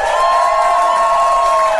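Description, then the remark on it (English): A live crowd claps and cheers loudly and steadily for a couple of seconds, a dense wash of noise with a sustained high whistle-like tone running through it. “Now, ladies and gentlemen, now give us a round of applause”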